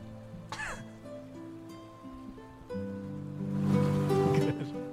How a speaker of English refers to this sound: Good. Yeah, we need that louder. You're going to need the Babbling Brook music louder.